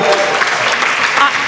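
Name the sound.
audience cheering and applauding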